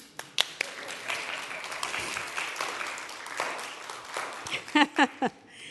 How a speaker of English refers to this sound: So that's talk number one. You can all clap.